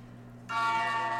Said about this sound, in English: You just hear the gong, dude. The gong.